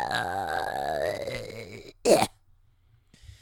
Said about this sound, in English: Okay, made myself cough there.